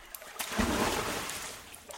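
Water splashes and churns in a swimming pool as a person in a wool five-piece swimsuit takes a dip into ice-cold water, a broad sloshing burst that swells in the middle and then settles into a softer wash. Fairly loud, with no voices.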